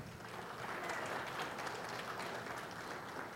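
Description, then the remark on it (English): An audience applauds a child helper bringing up a basket of food, a dense wash of many hands clapping at once, sustained at an even, fairly loud level for a few seconds without any talking. “Everybody give my helper a round of applause.”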